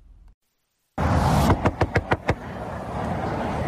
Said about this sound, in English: Listen to this audio of this dick. This, you can hear the guy rapping on the door. You hear it like this punk. Here's the audio.